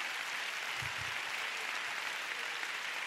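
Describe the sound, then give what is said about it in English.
A crowd applauds steadily, a dense wash of many hands clapping at once that stays loud and even throughout, with no voices standing out. A church audience claps in praise of God. “Come on, let's give God a big hand.”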